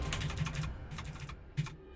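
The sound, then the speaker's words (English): Rapid, forceful typing on a computer keyboard, with bursts of clattering keystrokes separated by brief pauses, fairly loud with no voices. “Emphatic typing noises.”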